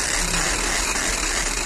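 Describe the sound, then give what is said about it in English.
An old-fashioned hand-crank telephone is cranked, making a steady, continuous mechanical whirring rattle that holds at an even loudness for under two seconds with no voices. “Ah, the old-fashioned hand crank sees your phone.”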